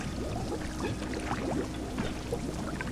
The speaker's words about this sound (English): The posse poured gallons of piping hot tar into my hiding place. As the tar rained on me, my flesh melted off my bones like candle wax.